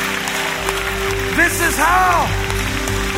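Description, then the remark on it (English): An audience claps steadily to thank God during worship, a dense, continuous patter of many hands, while a voice rises and falls over the top with sustained, sung-sounding tones. “Come on, let's clap our hands and thank God for his word.”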